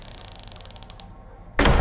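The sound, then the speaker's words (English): After a quiet stretch of soft rustling and a faint ticking rattle, a guard slams a heavy trunk lid shut with one loud thud at the end. “The guard sniffed and wrinkled his nose before slamming the trunk.”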